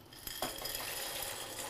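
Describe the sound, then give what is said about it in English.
Pasta is stirred in a pot of salted boiling water with hot pepper flakes, with a couple of sharp metallic clinks and scrapes from the utensil over a steady, bubbling hiss of boiling water. No one speaks. “And we give a nice turn for the pasta.”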